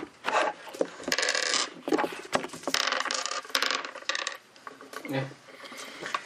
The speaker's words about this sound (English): Okay, so as you're walking back into the ship, make perception rolls, please. I will not pre-roll the dice.